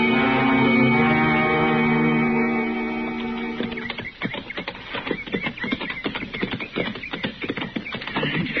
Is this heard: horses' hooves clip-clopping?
yes